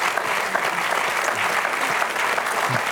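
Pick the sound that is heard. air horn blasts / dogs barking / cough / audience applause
audience applause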